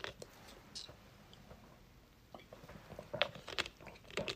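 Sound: sipping a soft drink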